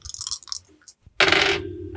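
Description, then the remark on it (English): A few light clicks, then a loud clatter as dice tumble and rattle across a hard table surface before settling with a faint ringing tail, rolled for a check in a tabletop role-playing game. “Well, I'm going to get my nice dice.”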